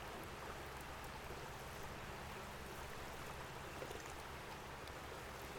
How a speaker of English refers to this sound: Okay, guys, I'm getting the reason I wasn't talking there is because I was adjusting a fire. I'm trying to get some bubbles going. Boiling bubbles.